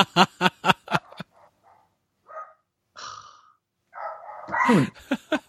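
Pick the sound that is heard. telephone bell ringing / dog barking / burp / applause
dog barking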